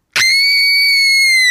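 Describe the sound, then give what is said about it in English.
A single loud, sustained high-pitched performed scream from one voice, held steadily for over a second with a sharp onset, unaccompanied by other sounds. “scream if like you were being held at gunpoint”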